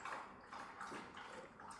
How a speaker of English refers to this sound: Dog's drinking his water over there.